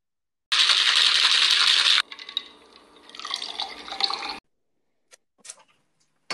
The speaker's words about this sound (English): I'm gonna try to get y'all red cups. Get ready to pour up with us.